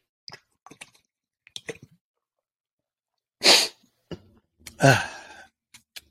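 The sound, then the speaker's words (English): Someone takes a drink: a few soft wet clicks and gulps of swallowing, then a loud breathy exhale and a voiced, satisfied sigh, followed by faint mouth clicks. “Let's take a drink here. ASMR break.”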